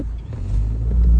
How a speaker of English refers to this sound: Sorry, I did a little burp gasp thing for air.